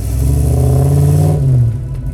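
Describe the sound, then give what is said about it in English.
A deep, rumbling V8 sports car engine revs up, its low harmonic tone rising and holding before easing off and dropping away near the end, loud with no voices. “Back when V8s were synonymous with sports cars, and cars with bigger displacement engines and more cylinders tend to make a deeper noise.”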